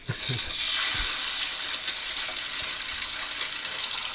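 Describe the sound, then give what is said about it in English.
An egg sizzles in a hot frying pan with a steady, bright crackling hiss that holds at an even loudness for a few seconds, with a couple of soft low knocks near the start. “This is drugs. Frying pan.”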